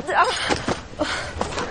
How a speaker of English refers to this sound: We slap motherfuckers in the face, King Joffrey. Slap the taste out of his mouth.